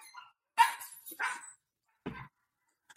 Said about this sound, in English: Okay, dog. Oh my God, get that dog out of here.